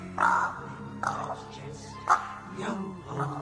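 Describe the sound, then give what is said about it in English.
A parrot lets out several harsh, raspy squawks in short bursts about a second apart, loud, with a low murmur of background sound beneath them. “Him and his old parrot.”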